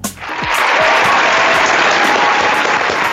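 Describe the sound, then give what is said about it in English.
An applause sound effect: loud, dense applause swells up within a moment and holds steady, a bright wash of many hands clapping at once with no voices heard over it. “Oh, that's that applause is for me.”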